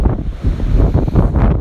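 Strong coastal wind at the Cliff House, San Francisco, south side of the Golden Gate Bridge, buffets the microphone with a loud, continuous low rumble and gusty roar, steady throughout the short stretch with no voices.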